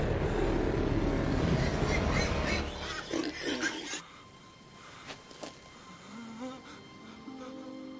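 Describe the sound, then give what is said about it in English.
A herd of about 2,000 pigs grunts and snorts in a loud, dense jumble that thins into scattered grunts and a few drawn-out squeals, with no talking. “Let us enter into the herd of swine.”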